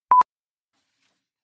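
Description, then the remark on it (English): A single short electronic beep, like a cell phone ring tone cut off after a fraction of a second, clear, followed by silence. “That was a cell phone.”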